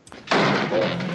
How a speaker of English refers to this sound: Again, slamming the door.